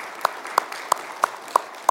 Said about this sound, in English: But that's what a team from our church is doing right now. So let's give a round of applause to them and to the Lord.